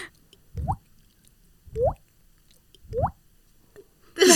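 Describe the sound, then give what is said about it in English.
A voice imitates dripping water with three evenly spaced, rising plink sounds, each a low thump sweeping upward in pitch, followed by a brief burst of noise at the end. “Yeah, I think there's actually a leak in the studio.”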